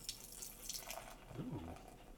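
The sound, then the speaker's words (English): Beer from Brewster's Brewing, 6.0% alcohol by volume, pours steadily into a glass and foams, a continuous hissing, splashing stream lasting about two seconds, with a brief murmur of a voice partway through. “Spread some foam there. It's getting my foaminess everywhere. In the pour.”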